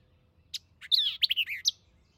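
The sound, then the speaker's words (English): A songbird sings a short, varied phrase of quick chirps and slurred whistles, inlaid with notes of several other birds, clear over a quiet low rumble. “This strain is very marked, and though inlaid with the notes of several other birds, is entirely unique.”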